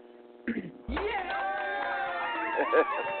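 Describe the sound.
A crowd-cheering sound effect: a sudden, loud swell of many voices shouting and whooping, sustained for a couple of seconds, with a brief burst of noise just before it begins.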